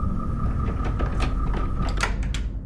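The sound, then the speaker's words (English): A door opens with a few creaks and clunks over a steady, rumbling background hum. The handling noises come in short bursts near the end. “You open up the door.”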